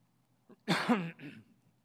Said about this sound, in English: Forgive my cough. I've been dealing with this cough for like a month now. My poor wife, who has to hear me hack all day long.